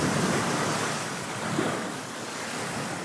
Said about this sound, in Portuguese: Então, daí você tá lá na Praia do Forte. Dia de sol, céu azul, calor, praia, aquela brisa do mar.